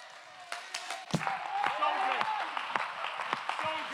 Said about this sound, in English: Some of y'all still pondering, what are we clapping about? We're reminding the devil of a day that he's already defeated.